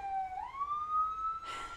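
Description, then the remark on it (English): A police siren wails outside, its tone gliding upward and holding steady, heard through an open window, followed by a brief burst of noise near the end. “fucking police sirens.”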